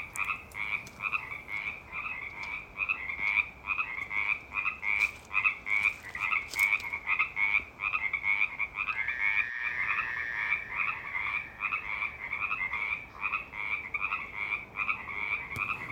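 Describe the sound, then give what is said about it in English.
A dense chorus of frogs croaking in rapid, continuous pulses, steady and fairly loud throughout, with a brief thump partway through and no voices. “So I feel like I want to hear from the frogs one more time.”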